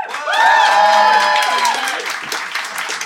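The festive Phoenix Flat Slam live audience bursts into sustained applause to vote on a mock Christmas legal case, with cheering and whoops rising over it, loud, holding strong for a few seconds before easing slightly.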